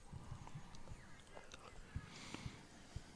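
Quiet, irregular hoof clops of a horse moving over hard ground, a run of soft thuds early on and a few sharper knocks later, with faint murmuring in the background.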